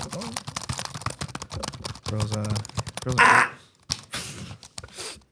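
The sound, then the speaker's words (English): Rapid clacking of a computer keyboard being typed on for ASMR, with a microphone angled towards it, dense irregular keystrokes throughout, briefly joined midway by a voiced vocal sound and a short sharp cry before the typing resumes. “He's currently angling his mic towards a keyboard so he can do keyboard ASMR.”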